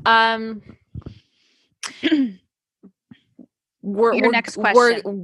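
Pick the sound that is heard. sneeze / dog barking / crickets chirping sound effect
sneeze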